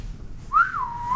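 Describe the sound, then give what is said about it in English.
A single short whistled note from a person, rising then sliding gently down and holding steady, clear against a faint low background rumble. “Can you whistle?”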